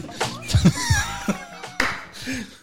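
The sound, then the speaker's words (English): A few sharp, irregular hand claps ring out, loud and brief, mixed with murmuring voices and what sounds like light laughter. “No, that's just me clapping with...”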